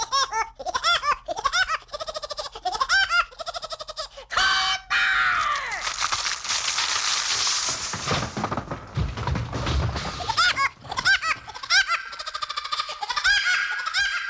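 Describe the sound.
A voice performs a cartoon woodpecker's laugh: rapid, high, chattering bursts in repeated runs, loud, broken up midway by a noisy, clattering musical passage before the laughing returns.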